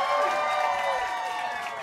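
An audience claps and cheers steadily, a dense wash of hand claps with voices whooping over it, holding at an even, fairly loud level for the whole moment.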